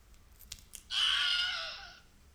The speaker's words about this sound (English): It's called a Wilhelm scream. Okay. Let's hear what it sounds like.